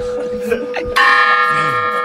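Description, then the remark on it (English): A large bell tolls, its lingering hum from an earlier strike giving way to a loud new clang with rich, shimmering overtones that ring on steadily, while faint voices murmur underneath; the bell is set to ring 12 times. “It's only gonna ring 12 times”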